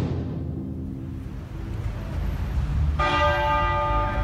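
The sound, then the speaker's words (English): The deep tenor bell of an ancient abbey tolls slowly, part of 96 tolls, one for each year of the life of Elizabeth Alexandra Mary; its long resonant hum fades before another loud stroke rings out, rich overtones shimmering, with no voices. “It began with 96 tolls of the ancient abbey's tenor bell.”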